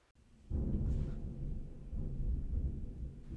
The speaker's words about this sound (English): What just happened? Did you hear that? No. Oh, the thunder just shook the house. Oh, this is making it so much more scary.